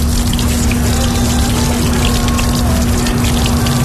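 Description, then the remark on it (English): A small pump hums steadily with a constant tone while water streams and splashes continuously from a hand-wash dispenser inside a taxi, set up by the driver as a COVID-19 safety measure, fairly loud, with no voices. “There's already soap inside, right? Yeah. Then the water.”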